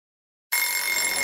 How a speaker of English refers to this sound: The sound of the school bell was annoying.